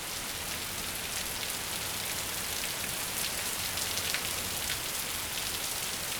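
Heavy rain pours down outside a home in Nashville on a very rainy day, in a dense, steady hiss, with individual drops pattering on a surface throughout. No one speaks, and the downpour stays constant from start to finish.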